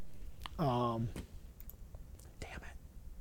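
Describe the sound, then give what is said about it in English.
A handful of scattered computer keyboard clicks and taps, quiet, with a short hummed or murmured voice sound near the start and faint whispery breath between keystrokes. “Oh, my keyboard's not even working.”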